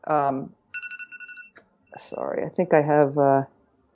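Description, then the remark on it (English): A quick run of about half a dozen short, high electronic beeps, steady in pitch and evenly pulsed, sounding briefly between bursts of a person talking. “Are you hearing that beep?”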